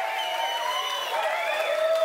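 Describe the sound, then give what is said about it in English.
An audience of about 200 people applauds steadily for a couple of seconds, a dense wash of clapping layered with high, sustained cheers or whistles, holding at an even, fairly loud level throughout. “Round of applause for the local core lord.”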